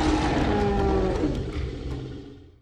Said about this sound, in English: The baby pachycephalosaurus rushed to its mom and knocked heads excitedly. The mom let out a happy roar.